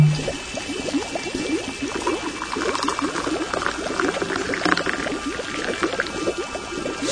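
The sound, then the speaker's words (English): Boiling water pours steadily from a flask for several seconds, a continuous splashing and gurgling stream with a busy, bubbling texture and no voices. “Now hand me my magic flask of endless boiling water.”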